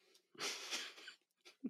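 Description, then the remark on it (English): A person imitates heavy, menacing breathing: one long, raspy, wheezing exhale lasting about a second, followed by a shorter breathy puff and a low grunt. “So after our heavy breathing, that was something very like that.”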